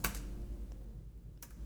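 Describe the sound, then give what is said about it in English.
A few scattered keystrokes on a computer keyboard, quiet and irregular, with a short burst at the start and another near the end over a low steady background hum. “Typing.”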